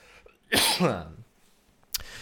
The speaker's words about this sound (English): Excuse me, I got a cough real quick.